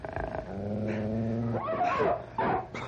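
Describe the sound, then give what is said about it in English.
Wolves growl: a sustained, rumbling low growl that breaks into sharper, rising snarls near the end, loud and continuous with no talking. “Come on, wolves! I'll fight you with my bare hands if I have to!”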